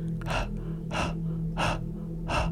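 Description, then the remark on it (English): Heavy, breathy panting close by, four harsh rasping breaths in a steady rhythm about two-thirds of a second apart, over a low constant hum, with no voices. “She got up and walked inside to get something, and as soon as she shut the door, I heard that panting sound again.”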